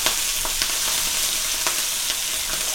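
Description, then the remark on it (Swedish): Pork sizzles steadily in a hot steel pan, a dense hiss of frying fat broken by scattered sharp pops and crackles, with no voices. “Oj, nu steker vi fläsk här.”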